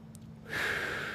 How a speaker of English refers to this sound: So what did I learn this week? I learned that, doing like, I don't know, these breathing practices, like just.